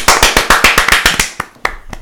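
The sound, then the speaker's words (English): A golf clap imitating Jason Garrett's clap: a quick run of about ten light hand claps at a steady, rapid pace, then a few slower, sparser claps trailing off. No voices. “He's got a great golf clap.”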